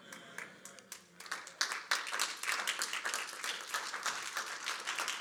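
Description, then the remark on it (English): An audience breaks into applause, with only one side of the audience clapping, starting with a few scattered claps that quickly swell into dense, steady clapping that continues to the end. “This side clapped and this one didn't”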